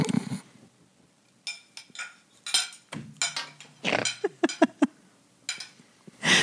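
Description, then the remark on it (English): Utensils clink against glass in an irregular flurry of sharp, bright taps, some ringing briefly with high tones, clustered in quick bursts with short pauses between and no talking. “It's utensils clinking against glass.”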